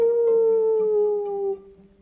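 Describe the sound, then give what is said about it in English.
A long, sustained wolf howl that glides slowly downward in pitch, loud, then trails off softer near the end. No one speaks. “The wolves had followed them. They're getting closer.”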